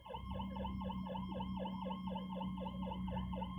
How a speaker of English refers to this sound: I got these fucking loud ass sirens. I may have to pause this.